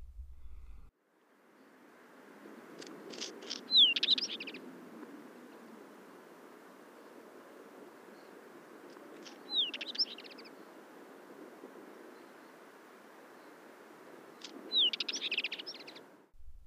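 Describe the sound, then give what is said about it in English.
A northern wheatear gives three spaced bursts of its call, a brief whistle followed by hard clicking chat notes, heard over a steady windy rush of open-air background noise. “The clear wee-chat-chat call is often heard in upland areas where the bird is usually found.”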